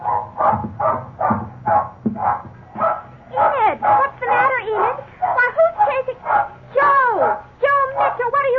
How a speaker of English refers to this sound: You can understand our big surprise when suddenly Enid began barking wildly.